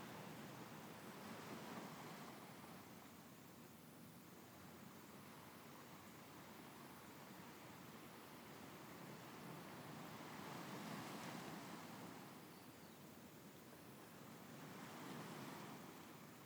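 ocean waves

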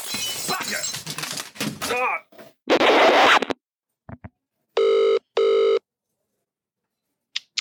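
telephone ringing

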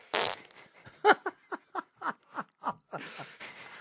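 fart sound effect

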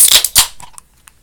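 sipping beer

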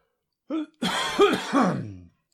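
coughing

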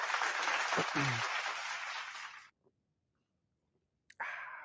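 applause

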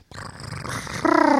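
cat purring

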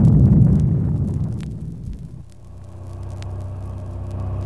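series of explosions

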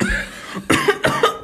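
coughing

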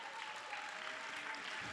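audience clapping hands

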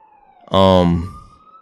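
police siren passing

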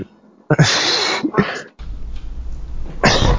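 sneezing

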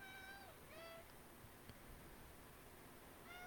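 cat meowing

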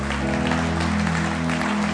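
audience applause

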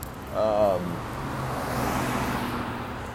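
car horn honking

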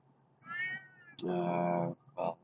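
cat meowing

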